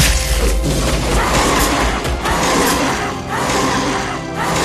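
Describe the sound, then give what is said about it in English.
Ultros, the Final Fantasy octopus monster and final boss, roars amid harsh, crashing roaring, bitey attack noises in a video game: loud, dense, gritty and continuous, swelling in several rough bursts over nearly five seconds, with no talking. “He makes a bunch of roaring, bitey attacks and moves his head in weird, gelatinous ways that he never did before.”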